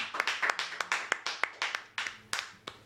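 An audience at a church service claps for the Lord in a steady, fairly quick rhythm, sharp overlapping hand claps at moderate loudness, with no talking over them.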